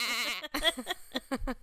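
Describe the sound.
A person imitates a goat with a wavering, nasal bleat held for about half a second, then follows it with several short, choppy vocal bursts, all fairly loud.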